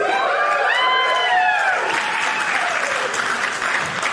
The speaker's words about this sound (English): I earned every bit of that applause.